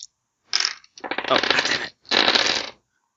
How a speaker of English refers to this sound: Alright, go ahead and roll your dice. My 3 dice. You can add 1 dice to it. So only minus 3 as opposed to minus 4. My 4 dice.